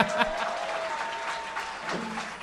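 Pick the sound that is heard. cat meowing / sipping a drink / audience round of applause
audience round of applause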